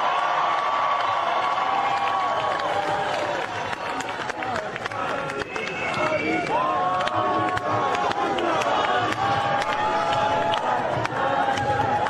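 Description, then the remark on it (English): A large rally crowd cheers and shouts continuously, a dense roar of many voices with whistles and rising chants swelling throughout, loud and sustained for the full length with no single speaker standing out. “What an extraordinary crowd.”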